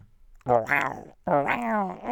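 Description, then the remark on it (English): A person imitates an animal growl with their voice, making two loud, rough, drawn-out vocal bursts of about a second each, separated by a brief pause. “I'll show you my growl.”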